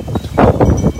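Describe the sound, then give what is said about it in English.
Strong monsoon storm wind in southern Arizona roars and buffets in loud, uneven gusts, tossing trees and bushes, a rough rumbling rush that swells and fades over a second, with no voices. “And the wind is blowing like crazy.”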